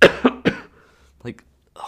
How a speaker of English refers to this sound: Oh yeah, I've still been coughing from the last episode of this one. I got sick again, which is so dumb.